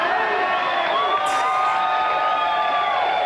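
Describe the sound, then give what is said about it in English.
A large crowd cheers loudly and continuously, a dense roar of many voices with whoops and shouts rising above it, including a brief high burst partway through. “Well, I think cheering.”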